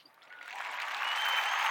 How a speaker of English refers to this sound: That's a low applause.